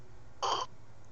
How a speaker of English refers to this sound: I just heard him slurp that right down. Yeah. Dude, you don't slurp straight whiskey like that.